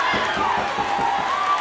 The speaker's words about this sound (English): So you're doing commentary live because you can hear the arena fans are in the studio yelling about whoever's coming to the ring in the background.